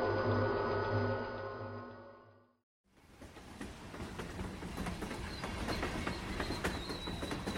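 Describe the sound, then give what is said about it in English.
A steady, humming tone fades into a brief silence, then the broad rumble and rattling clatter of a train rolls through a station, loud, continuing to the end. “Did they tell you if the train is running on time?”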